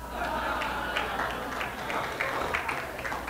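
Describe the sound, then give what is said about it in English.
An audience claps steadily for a few seconds, a dense patter of many hands at an even, moderate level, with no voices rising above it. “Oh, man, what are you even clapping for?”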